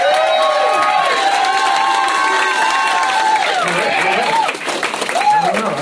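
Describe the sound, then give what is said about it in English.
A loud, sustained wave of audience applause and cheering at a comedy show, many voices whooping and shouting over steady clapping for several seconds before easing slightly near the end, as the audience is polled on whether they prefer Rob Cantrell's secret. “So, try not to applaud for both you guys.”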